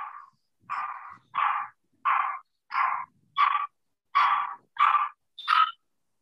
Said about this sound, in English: Wait, naririnig ba yung dog ko? Oo.